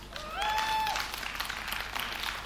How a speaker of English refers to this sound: We are starting another celebration. On May the 8th, 2016, we are starting a 5:30 p.m. celebration. Now you can clap.